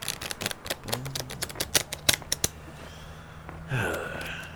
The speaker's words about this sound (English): Jerry took the deck and shuffled.